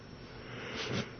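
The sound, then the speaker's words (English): A person yawns once, a breathy, airy exhale that swells to a soft, low voiced peak before fading out, with no talking. “Oh, man. Stop yawning.”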